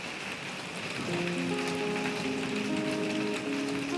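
Steady rain in Ireland patters on a surface in a dense, continuous hiss, with faint sustained tonal notes drifting in after the first second. No one speaks.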